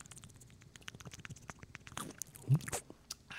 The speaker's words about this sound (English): That was a weird sounding drink that you just did there.